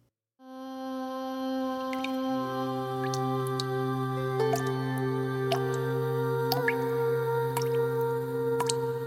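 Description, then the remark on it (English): Scattered water drips land at an irregular pace over a steady, humming tonal drone as someone bathes in fragrant water; no one speaks. “She bathed in fragrant water”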